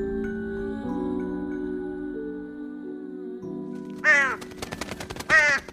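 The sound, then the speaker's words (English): A large black crow indoors gives two loud, harsh caws about a second apart, cutting in near the end over a low, sustained musical drone. “The bird settles on top of the chandelier and preens its long black wing, stretching its claws and looking pretty proud of itself.”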